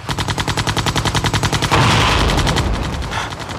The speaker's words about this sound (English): An army helicopter strafes the field.